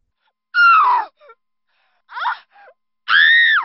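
A woman's terrified screaming inside a house at night: three loud, high-pitched cries, each bending downward and breaking off, separated by short choked gasps.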